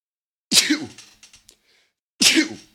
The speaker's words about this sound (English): I'm going to sneeze again.